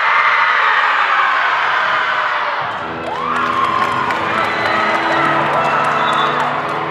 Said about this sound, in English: Before the opening buzzer, the Jaguars do their breathing roar again to get their nerves out.